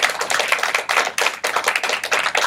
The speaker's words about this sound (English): This morning is Overflow's birthday, which is pretty awesome. I think it's a big deal. We can clap for that, in fact, if you want to do that.